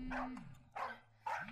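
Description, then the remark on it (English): A custom-made phone ringtone of a dog barking on a woman's phone, announcing an incoming call: three short, sharp barks evenly spaced over a steady electronic tone, loud with no voices. “I love her ringtone. I made that.”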